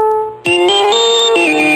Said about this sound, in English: Stay with me here. Phone call coming in.